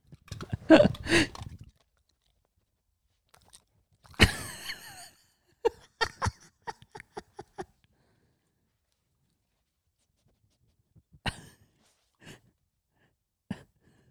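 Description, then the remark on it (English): A dog named Teddy chewing its food: bursts of crunchy, clicky munching and quick snapping bites come in irregular clusters with quiet pauses between. No one speaks. “No, he's eating his food.”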